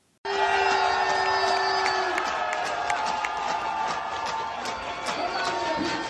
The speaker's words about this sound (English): I mean, these ridiculous people applauding her, applauding her. Why would you be applauding this woman?